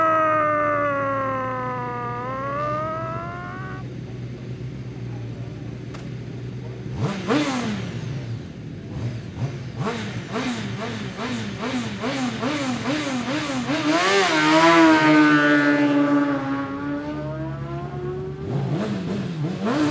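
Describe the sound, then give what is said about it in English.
Racing motorcycle engines rev loudly, their pitch climbing and dropping in repeated surges, with sharp crackling bursts through the middle and a roaring peak near the end. “But I think all that's left to say now is, gentlemen, start your engines.”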